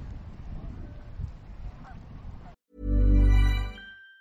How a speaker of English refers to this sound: The geese. No. We'll listen to the geese.